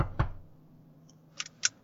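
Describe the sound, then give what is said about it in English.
Knocking on a door: a dull thud followed, after a pause, by two crisp raps close together. Fairly quiet and isolated, with no voices. “I was nervous just from the knocking, but I...”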